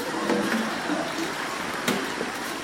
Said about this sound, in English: That's actually going for 5 minutes. So we already have the water that's boiling. Wow, that boiled 8 cups fast. Of water.